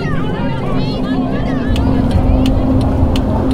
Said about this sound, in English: Okay. Well, there you go. There's the engine. Dead.